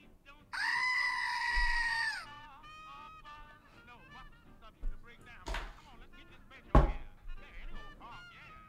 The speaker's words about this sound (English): Oh, it's a little goat. It's a little goat, and it looks like there's sound associated with it. May I? Yes, you may. Just push down on the goat. Just push down on him.